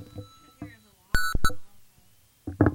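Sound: phone ringtone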